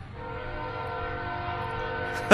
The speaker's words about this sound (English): But the train's about to blow his whistle here in just a second. There he goes. I knew it. Like, I could tell by where it was that he's about to hit that horn.